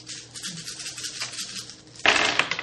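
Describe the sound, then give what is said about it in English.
A soft, steady rattle of dice being shaken, then a sudden loud clatter as they tumble and bounce across a hard tabletop, with a few sharp clicks at the end. “I need three more dice.”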